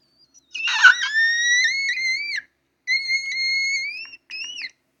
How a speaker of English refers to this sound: Wait, I've been trying to practice on my whistles. You know, the whistle notes.